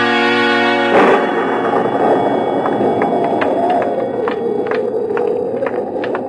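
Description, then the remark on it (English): A sustained musical chord cuts off into a low, steady rumble of distant thunder from an approaching storm, continuous and fairly loud, with faint sharp clicks scattered through it. “I think we shall just miss the storm if we hurry.”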